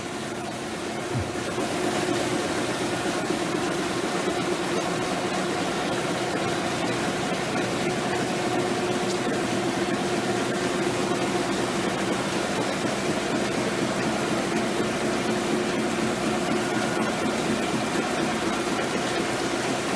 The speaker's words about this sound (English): Can you turn the volume up a little bit? Then you'll know how noisy it is in that room. Our printers wear earmuffs.